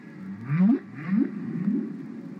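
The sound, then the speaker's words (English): Whale song: a series of three low, rising moans, each sweeping upward in pitch, with a faint airy hiss above, heard alone and fairly loud. “I decided that I wanted to make a record almost at once. What I decided is the world has to hear this.”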